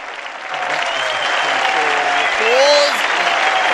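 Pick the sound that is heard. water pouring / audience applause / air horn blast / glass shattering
audience applause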